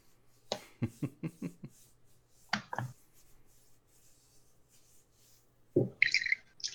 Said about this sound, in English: Oh, who is pouring something? Is it good? Me. I'm just going to mute myself. What do you got? Lemon water. Lemon water.